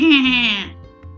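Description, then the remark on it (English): A single loud sheep bleat with a wavering, slightly falling tone, lasting just over half a second before fading into a quiet background hum. “The orange tractor brought back the lost sheep.”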